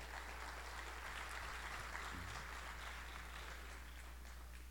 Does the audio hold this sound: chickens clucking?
no